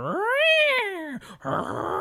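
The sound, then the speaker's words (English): A voice imitates a yowling cat fight: one long, loud, wavering screech that rises and falls, a brief pause, then a harsh, raspy snarling yowl, alone. “Like somebody fighting some damn cats in the morning.”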